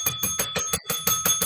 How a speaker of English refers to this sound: Why are you ringing the bell? That bell means it's 5 o'clock somewhere.